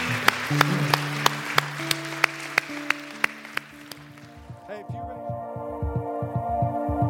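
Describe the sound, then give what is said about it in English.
A crowd applauds five individuals who raised their hand, a steady rhythmic clap cutting through over sustained keyboard chords. The clapping fades after a few seconds as someone begins speaking. “Can we give these five individuals that raised their hand a huge round of applause?”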